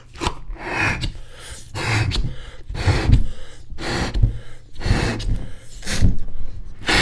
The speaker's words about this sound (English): Okay, so this week we're blowing up a balloon. Back to basics. 6 points. Here we go.